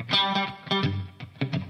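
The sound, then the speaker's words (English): Clean electric guitar picks out a short melodic phrase of plucked notes and chords, each attack trailing into a soft room reverb that fills the space between notes. Moderately loud, no voices. “Nice little room reverb.”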